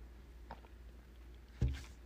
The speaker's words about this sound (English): And I need one more cup of coffee, one more sip, okay? One more.